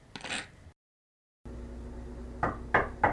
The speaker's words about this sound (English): Who's that knocking at the door?